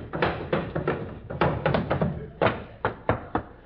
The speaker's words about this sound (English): In the modest home of the Great Gildersleeve, there occurs a phenomenon peculiar to male youth. It is marked by the gentle pattering of feet.